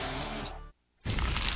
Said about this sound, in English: Is that the sound of an ooey gooey Murfreesboro cheesy Post crunchy slice is Rutherford of County sports leader? Obviously.